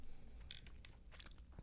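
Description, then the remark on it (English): Wet chewing of firm gummy bears, a few soft squishing clicks at an irregular pace over a low steady background, with no talking. “Resistance when you chew them. Your teeth don't just sink into them like mud. You're chewing.”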